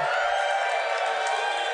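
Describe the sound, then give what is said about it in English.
A crowd of about 300 people cheers in a steady, dense roar that holds at an even level for under two seconds, with no single voice standing out. “That sounded like about 300 people.”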